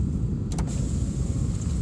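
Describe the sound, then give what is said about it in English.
A car engine idles with a steady, loud low rumble and a faint high whine, broken by a couple of quick clicks early on. No one speaks. “Hell, fucking car running noise is louder than damn brakes.”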